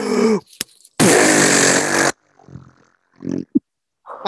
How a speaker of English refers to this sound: Oh, that sounded real. At least on my end. I don't know how it'll come out in the recording. Sounded like a what? Like a wet fart.